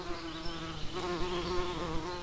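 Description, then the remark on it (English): A dense swarm of bees buzzes steadily, a continuous droning hum with overlapping wingbeat tones that swell slightly but never pause. “Next up, reporter Noah Baker has been investigating how a swarm of bees hold themselves together.”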